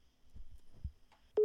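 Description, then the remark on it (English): After a stretch of quiet low rumbling and soft thumps, a loud, steady telephone line tone abruptly cuts in at the very end, like the signal of a dropped call, during a phone call into a live on-air show. “We're getting a phone call.”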